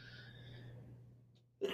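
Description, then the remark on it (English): A low steady hum fills the background, then a single sharp, loud sneeze bursts out abruptly near the end. “Bless you.”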